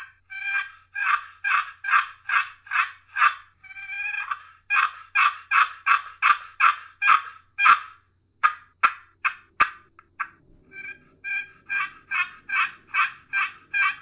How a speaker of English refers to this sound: But I'm going to move the call away from the mic, run this box call for a few seconds, and this is what the winner is going to get.